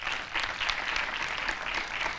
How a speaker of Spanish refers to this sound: Gracias, chicos, por poneros de pie. Ok, les damos un aplauso.